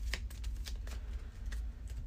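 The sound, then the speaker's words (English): A thin deck of game cards being shuffled, a quick run of crisp riffling snaps and flicks over about two seconds, with no one talking. “Shuffle this up.”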